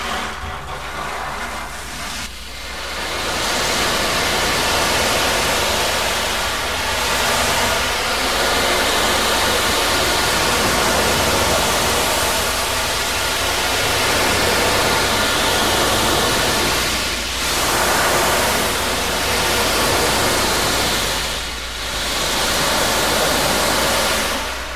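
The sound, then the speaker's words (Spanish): An ocean drum, which is also a shamanic drum, rolls its beads in a steady, loud wash of hiss that swells and briefly eases every few seconds, imitating waves breaking on a shore, with no voices. “Este mismo tambor chamánico es un tambor oceánico, ¿verdad? Y vamos a escuchar el mar con su uso.”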